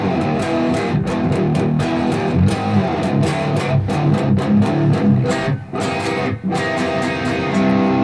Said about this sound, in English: We're yeah. slowly getting oh, yeah. out of it, and then it gets into a heavy... good old power chords.